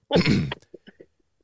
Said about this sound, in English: Fart noise.